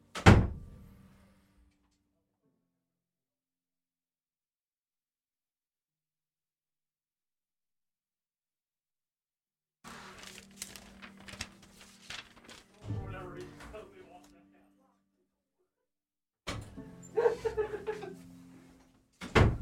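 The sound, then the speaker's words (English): A door thuds shut, followed by a long stretch of silence, then scraping and handling noises as a door is opened and closed again at the end. “I'm going to let John come in and then go to the bathroom. You can lock the door.”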